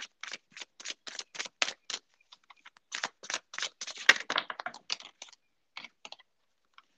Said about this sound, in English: All right, so basically I'm just going to shuffle the deck and cards will fall out and I'll put them into the placement and then we'll get started.